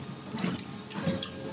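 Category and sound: food or drink, drinking water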